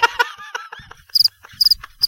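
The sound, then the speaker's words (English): A cricket chirping sound effect: three short, high-pitched bursts about half a second apart, each a quick trill of pulses, clear, after a brief jumble of tonal noise at the start. “And they got pockets full of crickets, apparently.”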